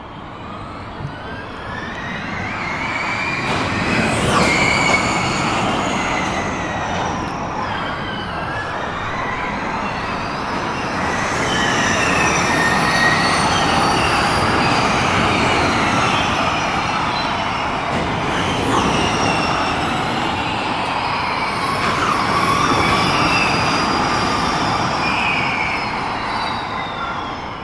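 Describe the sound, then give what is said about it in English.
Formula E race cars pass repeatedly during a qualifying session, heard from an outdoor balcony, their high electric whine sweeping up and down in pitch over a steady, loud rushing roar, with no voices. “The cars have just finished the first part of the qualifying session, and hearing the cars out here with no commentary to interrupt it, you get a good idea of what Formula E cars sound like.”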